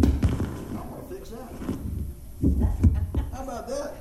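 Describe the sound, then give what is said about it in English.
Low, muffled heartbeat thumps pulse at an uneven pace beneath people talking, the deep beats fairly loud. “Too many heartbeats.”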